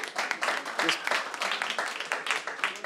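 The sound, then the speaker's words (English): An audience claps together for the speaker's son in a dense, steady burst of applause lasting a few seconds, with faint voices mixed into the crowd noise. “Y'all shouldn't be clapping for him, because it stinks in my house right now, and I probably smell like it right now.”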